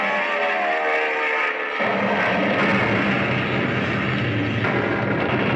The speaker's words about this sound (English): Through the gray sky, still heavy with the smoke of battle, a lone airplane roars toward its target. From the Jap guns, red tongues of flame flash upward. Battered and full of holes, the plane flies on, and then swoops downward.